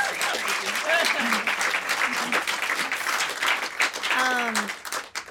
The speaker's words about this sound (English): Also, another round of applause for my beautiful, beautiful guitarist